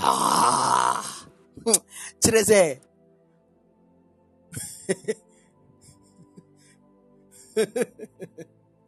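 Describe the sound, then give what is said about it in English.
A man's voice imitates loud snoring: a long rasping snore followed by several shorter, throaty snorts in irregular bursts, forceful, with quiet pauses between them. “Imagine God just dispatched you from heaven, go and save somebody, and you went into prison, and so the person is busy snoring.”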